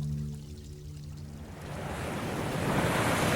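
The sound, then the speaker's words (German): A low steady rumble gives way to a broad rushing wash of waves that swells and grows louder, with a mild north wind blowing through it, heard aboard an old dhow under sail on a sunny day. No voices. “Strahlender Sonnenschein, ein milder Nordwind in den Segeln, die Planken der alten Dau knarren in den Wellen und um uns herum das atemberaubendste Land der Welt.”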